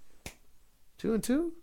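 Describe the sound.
A single crisp finger snap rings out on its own, followed moments later by a short burst of voice mixed with a couple more sharp clicks.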